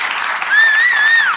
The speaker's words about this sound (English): Thank you very much. Big round of applause for the winner.